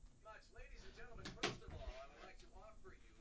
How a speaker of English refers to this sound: I just heard a door close. Someone was in there.